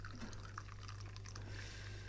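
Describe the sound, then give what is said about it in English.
Tea pours from a very large teapot into a small cup in a steady trickling stream, a soft liquid splash running continuously for a couple of seconds over a low background hum. “We'll just pour this.”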